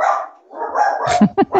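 A pet dog barks three times in quick succession, loud, after a brief stretch of muffled, voice-like sound.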